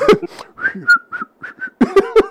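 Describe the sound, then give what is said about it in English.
A man whistles a short, bouncy tune of several quick, clear notes as he comes into the house, framed by brief bursts of voice at the start and end. “come in the house whistling like that Cialis nigga.”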